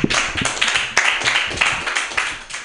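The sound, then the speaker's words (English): A person claps hands in a quick, steady rhythm, roughly eight or nine sharp, bright smacks over a few seconds, fairly loud with no talking. “I was clapping for not snitching.”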